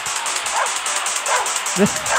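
Dogs bark as the vocals of a death metal track, three short harsh barks spaced about a second apart over a loud, dense wall of distorted noise.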